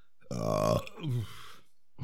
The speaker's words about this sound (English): See, and then when you chuck the wine, you get the burps